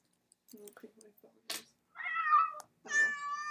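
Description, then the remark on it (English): A cat meows repeatedly from a soundboard: a few short chirpy mews and a brief noisy burst, then two long, drawn-out, fairly loud meows, with no one talking. “There's gotta be like a cat. What is it, like soundboard? Oh, yeah. Hold on, cat keyboard, soundboard. I found one.”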